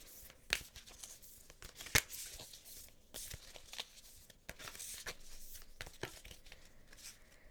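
Soft papery riffling and slapping of Work Your Light Oracle deck cards being shuffled, with a few sharper flicks and snaps scattered through the steady rustle.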